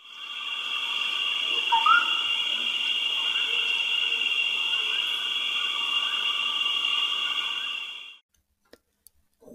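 Jungle ambience: a dense, steady high-pitched drone of insects and frogs, with brief chirping animal calls now and then, cutting off abruptly near the end, followed by a few faint clicks.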